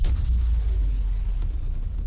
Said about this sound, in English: A blast of sand stung her face and her ears rang from the explosion.